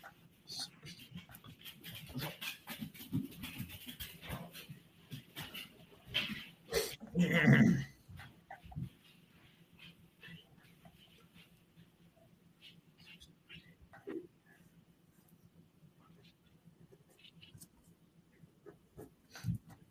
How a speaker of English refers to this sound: While you're counting that up, I'm going to let the dogs outside. Hold up.